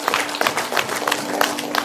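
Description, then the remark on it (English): A church audience claps for the Lord together in a dense, steady burst of applause, many hands overlapping into a continuous crackling roar with a faint low hum underneath. “Let's give the Lord a hand clap, church.”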